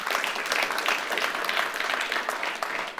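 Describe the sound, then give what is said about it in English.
Sustained applause from a church audience fills the space, a dense wash of many hands clapping at once, steady and fairly loud throughout with no voices standing out. “This, some of you have, yes, you can applaud that.”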